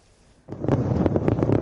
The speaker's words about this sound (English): The ceremony was a spectacle unto itself, culminating in a massive fireworks display that turned Beijing's night sky into a glorious spectrum of color.